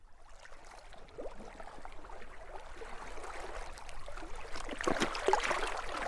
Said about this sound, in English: The kayaks are now resting in the sand, and waves are gently lapping onto the beach.